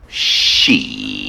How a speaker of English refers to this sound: Oh, wait. Do you want to hear the buzzers real quick?